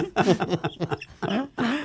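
A person coughs several times in quick succession, fairly loud, with rough voiced bursts and the last two coughs coming out heavier.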